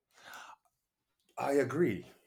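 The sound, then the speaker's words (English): A deep, breathy gasp of air lasting about half a second, followed after a short pause by a louder voiced murmur with a rising and falling pitch. “That was a deep gasp.”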